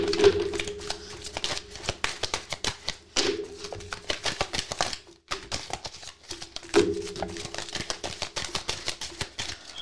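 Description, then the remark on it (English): A deck of cards is shuffled for a last time, its rapid papery riffles and flicks coming in dense bursts for several seconds, with a brief pause midway and a faint steady hum underneath. “Last shuffle.”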